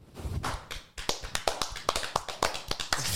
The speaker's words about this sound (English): We clapped.